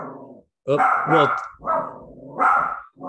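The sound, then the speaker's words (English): A dog barks repeatedly, loud, harmonically rich barks in quick succession with brief pauses between them, with no voices clearly heard. “Your dog wants to talk about the WNBA more”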